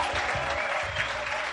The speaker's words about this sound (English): Jesus, a mighty clap for him. Applaudissez pour Jésus.